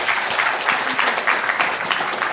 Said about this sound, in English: So I'd like you just to welcome our panel this morning and give them a clap.